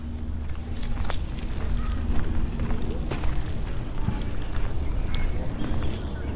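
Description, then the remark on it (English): Steady crunching footsteps on gravel in an even walking rhythm along a gravel entrance way at Eelbrook in light rain, with sharp gritty crackles over a continuous low rumble of background noise. “This is a gravel entrance way.”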